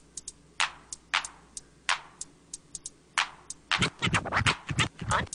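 Rhythmic record scratches, sharp swishing bursts with crisp clicks between them, over a quiet low backing; from about the midpoint the scratching turns rapid and dense in a louder flurry.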